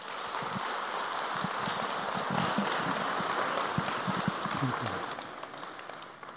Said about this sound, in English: So if you would please welcome him with some applause.